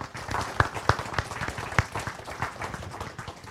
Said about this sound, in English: Well, if there are no further questions, let's have one more round of applause for Christopher Zeeman.